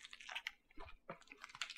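Crunchy chewing of a grasshopper taco topped with cilantro and salsa, the grasshoppers seasoned with adobo: a quick run of crisp, brittle crunches and clicks in an irregular rhythm, loud, with no talking.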